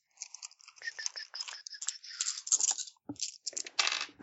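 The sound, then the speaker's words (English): Six dice rattle and clatter, a dense run of quick clicks and knocks that tumbles on for a few seconds before settling. “So that's brains plus see the battlefield. So six dice, awesome times two.”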